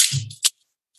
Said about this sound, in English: Foley, Spartacus is turning into a Greek tragedy. If this army can't charge, we'll all go broke. And so Jack Foley just grabs his keys and says, why don't I just do this?